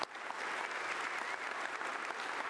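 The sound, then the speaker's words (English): An audience in a church cafe in Woodburn, Kentucky, bursts into steady applause with some cheering mixed in, welcoming visiting Panama City Beach Baptist Church one morning; a dense, continuous wash of clapping that stays loud and even throughout. “Can we welcome Panama City Baptist Church in the cafe this morning? Make some noise.”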